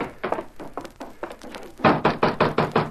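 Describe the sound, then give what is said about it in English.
Knocking on the wooden door of a house where a girl lives alone: a steady series of moderate raps, a brief pause, then a second, louder and more insistent run of knocks in an even rhythm, with no voices and no answer from inside. “Don't look like she's going to answer the door.”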